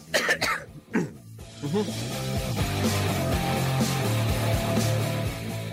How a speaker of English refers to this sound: I would much rather be at the pharmacist getting medication for this cough